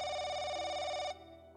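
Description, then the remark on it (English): A telephone in a house rings once as police call it, a loud electronic trill lasting about a second before cutting off abruptly, leaving a faint quiet tail. No voices are heard. “When Mike answered the phone, they told him that the police were outside and asked him to answer the door.”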